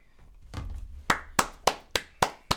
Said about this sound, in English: No, it's gotta be a slow clap.